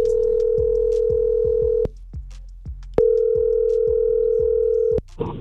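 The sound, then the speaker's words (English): A radio show's outgoing call to a contest entrant rings out with a ringback tone: two long, steady electronic tones separated by a short pause, loud and clear, with faint thumps underneath and no one speaking. “So check your phone right now because we're gonna give this person a call.”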